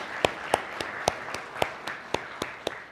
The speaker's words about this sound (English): Let's give these people a round of applause and show our appreciation.